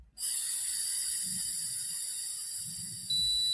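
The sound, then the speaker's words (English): A breath ketone meter hums with a steady, bright electronic hiss and soft breathy puffs as someone blows into it to test for ketosis, then a single sharp, high-pitched beep sounds and holds at the very end, signalling to stop blowing. No one speaks. “When it beeps at you, you start blowing into it. When it beeps again, you stop blowing into it.”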